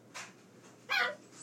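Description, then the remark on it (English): A dog barks twice, a short sharp yap followed by a louder, fuller bark about a second later, against a quiet background. “Why go get our dog to stop shouting?”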